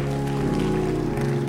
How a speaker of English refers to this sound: And I clap those hands as you take your seat.